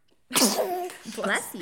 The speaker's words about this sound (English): Bless you. Excuse you. Don't mind the sound effect.